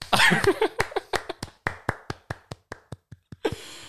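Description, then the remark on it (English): A brief burst of voice gives way to a slow clap: a steady series of about a dozen sharp hand claps, evenly spaced, ending with a short rustle. “A slow clap for you.”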